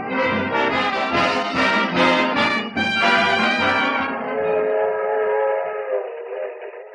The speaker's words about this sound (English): A suburban railroad station. 2 men go into the smoking car.